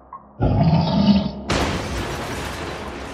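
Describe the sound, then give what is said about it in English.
A bear's deep growling roar rises for about a second, then breaks into a loud crash of shattering glass and debris as it lifts a television over its head and hurls it across the room, rattling and hissing to the end. “The image went dark as the bear lifted the television over his head and hurled it across the room.”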